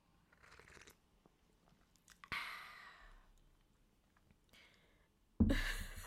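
Mouth sounds of someone sipping hot tea: a hissy slurp partway through, then a louder, noisier sip near the end, with quiet pauses between and no talking.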